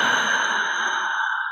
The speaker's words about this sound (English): These are called cleansing breaths. Literally bringing in that air, blowing it out as if we're taking time to cleanse our system, cleanse our body, get rid of all of that stress and anxiety.